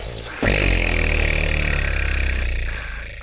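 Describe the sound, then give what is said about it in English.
A voice imitates a flock of birds taking off from a tree with a loud, steady, buzzing trill that starts abruptly, holds for about two seconds at an even pitch, then fades. “That was the sound when all of the birds, let's do it together.”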